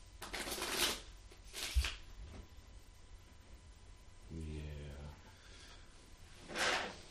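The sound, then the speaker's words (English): Playing cards being shuffled in the hand, several short crisp riffling bursts spaced apart, with a brief low murmuring voice between them. “I like how you shuffle, them in the hand or two anyway.”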